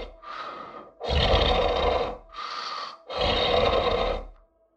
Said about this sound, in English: Sometimes it sits on the bed next to me and doesn't say a word. I can just hear it breathing.